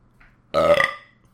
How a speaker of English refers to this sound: I just belched.